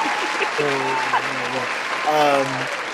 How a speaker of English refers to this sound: So yay, cue applause sound effect.